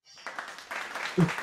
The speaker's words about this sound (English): We got the clapping in there. There's no expense spared on the Football Bloody Hell podcast these days. Exactly. We've got a live crowd.